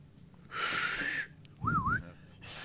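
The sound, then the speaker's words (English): A person's failed attempt at a loud, attention-getting whistle: first a long breathy rush of air with barely any tone, then a short, wavering whistled note that rises and dips before trailing off. “And somebody whistles real loud, that loud, like, hey, you, pay attention, dumbass whistle.”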